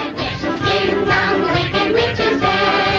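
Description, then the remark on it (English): A song played on air on a sports radio show, dedicated to the New England Patriots, plays loud and steady for the whole stretch, with dense, full-bodied music and sustained tones that fill the sound without pauses. “I usually wait until later in the season to do stuff like this, but I'm going to go ahead and play this song for the New England Patriots.”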